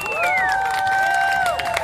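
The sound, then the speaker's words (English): A crowd at a Christmas show applauds and cheers loudly for Ballet Folklorico Viva Mexico, performing with a band, with steady clapping throughout and a sustained high whistle or whooping cry sliding down in pitch above the noise. “From the bottom of our hearts, on behalf of …, our friends from Ballet Folklorico Viva Mexico, yes, round of applause to them.”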